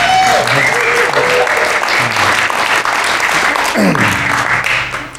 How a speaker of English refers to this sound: And thank you to those three people who just applauded. I appreciate that.